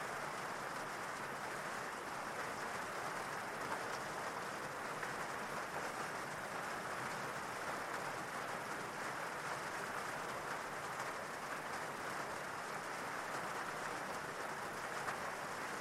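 rain falling

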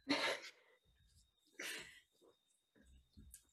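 sneeze

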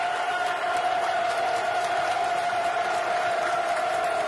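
football crowd cheering

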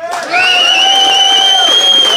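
audience applauding and cheering

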